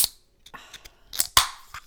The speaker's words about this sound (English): I'm actually going to crack open my Coke No Sugar Vanilla. I think I told you about this in the last episode, but nothing like a bit of ASMR. I love the sound of a can opening.